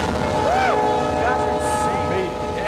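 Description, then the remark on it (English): A train rumbles past in a loud, continuous roar, its horn sounding in sustained tones that bend in pitch as it goes by, with indistinct voices underneath. “Come on, let's race that train.”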